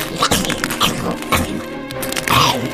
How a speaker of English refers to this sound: And as it lets out the screech, you go to drive the glass into the back of its neck, and it turns to face you, and it chomps the glass, disarms you, and eats it. Just, you hear the glass crunching inside of its mouth.